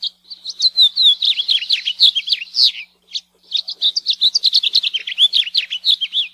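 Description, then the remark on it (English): A house finch, an introduced species in the Hawaiian islands, sings a long, rambling warble of rapid chirps and slurred notes, bright, with one brief pause midway before the jumbled song continues without any voices. “Today's spotlight is one of the most common songbirds in the islands, the house finch.”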